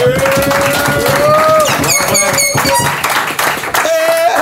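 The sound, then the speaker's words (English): A loud, continuous burst of audience clapping and applause, mixed with cheering voices and shrill whistles rising above the crowd for several seconds. “Let's make some noise for our clap.”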